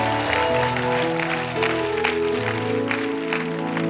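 A crowd claps steadily and continuously as a hand clap offering to the Lord, the sound blending with loud sustained keyboard or organ chords that ring throughout, with no clear pause in the applause.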